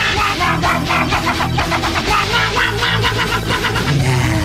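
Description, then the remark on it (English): A song performed with dog sounds, loud and densely layered, with rapid rhythmic bursts pulsing steadily for the whole stretch and no talking over it. “That's a dog.”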